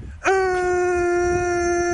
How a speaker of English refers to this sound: That's a car horn. I didn't play the siren. Okay. That's a car horn.